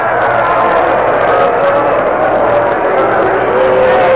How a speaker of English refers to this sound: A little extra roar you heard was the ball boy who recovered the ball before a spectator could get to it, and he was roundly booed because of it.